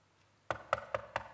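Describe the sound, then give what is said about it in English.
Five evenly spaced knocks rap on a door after a brief silence, crisp and close, in a steady rhythm with no voices. “You see, this prophetic knocking on the door is what Jesus is doing right now.”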